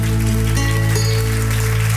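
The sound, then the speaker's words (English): A canned applause sound effect: dense, steady crackling claps from a crowd, fairly loud and unbroken for two seconds, with a low hum underneath and no talking. “Thanks for the enthusiasm, fake applause, and welcome to Show Your Story.”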